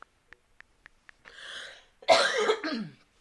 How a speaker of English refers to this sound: I apologize for all the coughing. It is killing me.